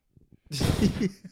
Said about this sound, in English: Well, your lungs sound heavy, cuz. You should stop smoking, B.